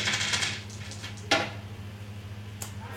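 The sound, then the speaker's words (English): Two dice clatter across a tabletop in a short rattling burst, followed by two sharp, separate clicks as they settle, with a low steady hum underneath and no voices. “how many dice is that so far? That's 5 total. Just roll 2 of those.”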